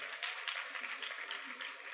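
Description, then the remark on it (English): A crowd applauding the leaders of a children's group steadily, with dense, continuous clapping that holds an even loudness throughout and never breaks into distinct individual claps. “And I think these leaders deserve another round of applause.”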